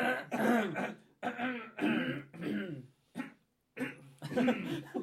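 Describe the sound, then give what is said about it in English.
Repeated throat clearing, several rough voiced bursts in quick succession with brief pauses between them, fairly loud, with no actual words spoken. “Or if you phone me, it's always hello, clear my throat.”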